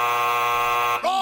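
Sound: quiz buzzer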